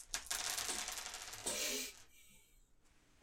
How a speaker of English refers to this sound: So this is a physique roll. Is that how this works? Yep. So that gives me six dice. Six dice.